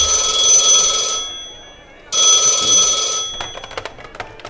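A telephone at Barkeep's Bar rings in two long bursts of bright, buzzing electric bell tone separated by a brief pause, followed by a few faint clicks and rattles as the ringing stops.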